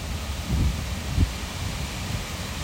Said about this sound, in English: Let me open the fucking window. I'm open the door. Oh, yeah. It's a blustery day today. It's very windy. Oh, that fresh air. Hear the wind?